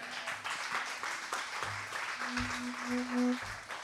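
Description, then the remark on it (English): An audience at a music performance claps steadily for a few seconds for a group of performers being called up on stage, a dense crackle of many hands with no pauses, while a low humming tone drones underneath. “Can you clap it up for all these guys?”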